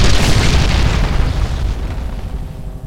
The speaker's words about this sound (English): you look down at your house and it explodes.